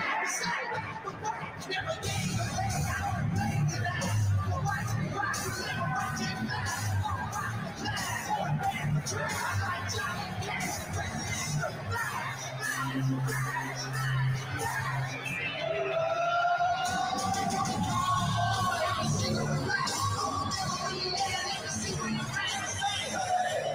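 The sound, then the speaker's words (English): A large crowd at an arena roars and cheers steadily for Donald Trump for about twenty-four seconds, a dense, continuous wash of many voices with shouts and whoops rising from the din, loud throughout. “Tell me anyone else running for president of the United States, tell me anyone else in politics that would get this type of reception.”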